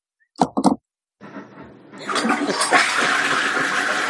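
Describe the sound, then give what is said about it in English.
A few sharp clunks of a toilet handle, then a toilet flush starts with a low gurgle and swells into a loud, steady rush of water that carries on to the end. “Go flush your toilet and come back and tell us which direction it runs in.”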